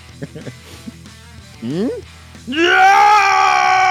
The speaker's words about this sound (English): As you scream into the sky, the acolytes look down, and they are just, they're loving that.